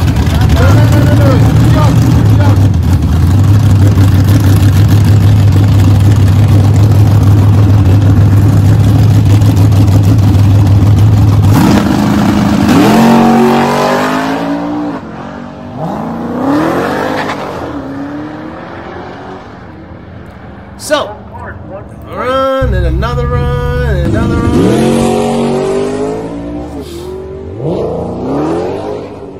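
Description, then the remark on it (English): A Dodge Challenger Demon 170 drones at a steady, loud idle at a drag strip, then roars off down the strip with rising engine sweeps through several gear shifts, punctuated by a sharp bang, the sound gradually receding. “Demon 170s are starting to be put out there in the wild, and they are racing them.”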